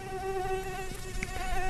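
A mosquito's thin, high-pitched whine drones steadily and continuously, wavering slightly in pitch but never pausing, with no voices present.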